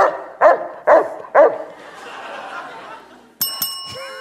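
A dog barks three times in a quick, steady, loud rhythm, followed by a soft murmur of background noise and then a bright bell ding that rings out at the end.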